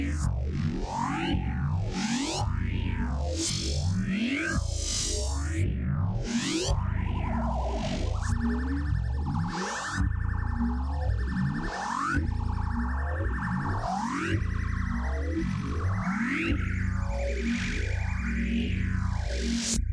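A dial-up modem connecting: a steady, loud run of warbling electronic chirps that sweep up and down in pitch, with harsh sustained tones layered through the middle, and no voices.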